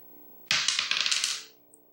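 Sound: dice being rolled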